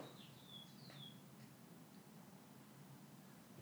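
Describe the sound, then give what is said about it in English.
A few faint, high-pitched bird chirps sound outside, clustered in the first second, then fade into a quiet, steady low background rumble with no one speaking. “Some birds outside.”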